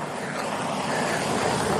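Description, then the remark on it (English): A Chevy truck roars by at speed on a red gravel road under a clear blue sky, a steady, loud rushing hiss of engine and tire noise that holds even for a couple of seconds, with no voices. “Oh, and here's a Chevy truck coming a million miles an hour.”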